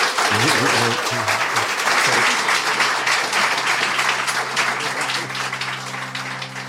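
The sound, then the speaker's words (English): An audience breaks into sustained applause for Dick Swanson, a dense, steady wash of many hands clapping at once that holds loud throughout, with some low voices murmuring underneath. “And let's give Dick Swanson a round of applause.”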